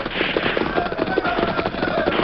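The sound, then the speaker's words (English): A dense volley of gunfire from a holdup at a stalled railroad train crackles steadily, with many rapid overlapping shots. The sound is fairly loud but muffled, with no voices. “As the Lone Ranger and Tonto urged their horses at top speed toward the stalled railroad train, the sound of gunfire increased.”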